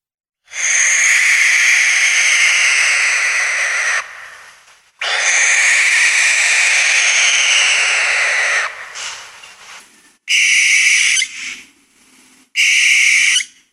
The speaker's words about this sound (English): And I have a sound of a common barn owl.